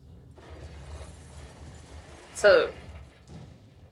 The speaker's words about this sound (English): So this is the Melbourne tram. I'll just turn it up a bit, sorry. Yeah. So we can hear a bit of the sound. Yeah, the sound effects. The sound effects really make it.